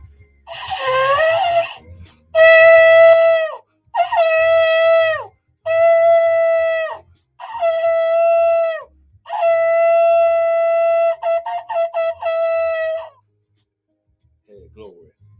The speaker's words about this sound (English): So let's start it off by blowing the shofar. Let's sound the alarm.